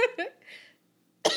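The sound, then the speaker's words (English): A few quick breathy vocal sounds, a short pause, then one sharp, loud sneeze burst, ending abruptly. “Bless you.”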